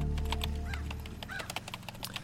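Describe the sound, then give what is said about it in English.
A shrill, raspy pterodactyl screech sound effect, with a few swooping squawks and harsh bursts over a steady low rumbling drone. “There's a pterodactyl.”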